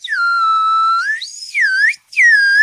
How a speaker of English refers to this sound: That's not actually a proper whistle.